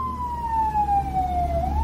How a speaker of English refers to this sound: I was going to say, I find it funny that a fire truck is driving by as we're talking about firemen. There go the hot firemen now.